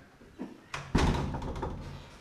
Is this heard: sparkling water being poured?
no